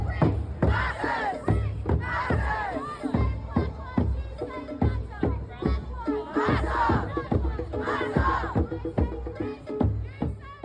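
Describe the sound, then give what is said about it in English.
A protest crowd in London's Trafalgar Square, protesting the death of Chris Cabba, shot by a Metropolitan Police officer, shouts together in a rhythmic chant, loud, overlapping voices rising and falling in repeated bursts, with sharp percussive beats marking the rhythm throughout. “As mourners gathered outside Buckingham Palace to remember the Queen, another crowd gathered nearby, in London's Trafalgar Square.”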